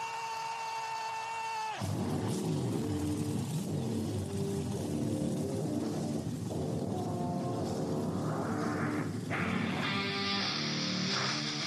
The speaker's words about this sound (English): Race fans, it's time for those most famous words in motorsports. Driver, start your engine.